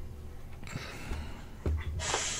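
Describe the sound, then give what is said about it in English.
A quick sneeze, a sharp breathy burst followed by a hissing exhale, preceded by a few soft snorting breaths. Fairly quiet, with no talking. “Gesundheit.”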